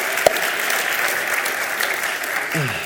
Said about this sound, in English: Awesome. Thank you guys. Let's just clap for them. Bless you guys.